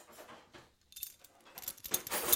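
Someone rummages through a drawer looking for a wine bottle opener, metal utensils clinking and jangling in scattered bursts, pausing briefly, then rattling more loudly and densely toward the end. No one speaks.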